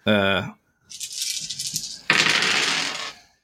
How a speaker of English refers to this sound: Eight D six. I love hearing all those dice.